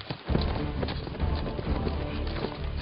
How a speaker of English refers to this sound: She galloped off toward the North Range, still 2 miles distant.